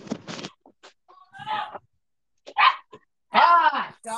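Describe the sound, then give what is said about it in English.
A dog barks several times in short, loud bursts, with a few quick yips and pauses between the barks. “What is going on with that dog?”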